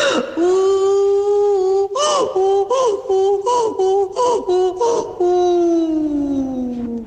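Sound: voice imitating a donkey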